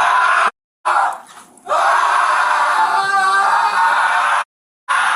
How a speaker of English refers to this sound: Hey, your child's right there. Listen to me. I need you to stop screaming because you're scaring your child.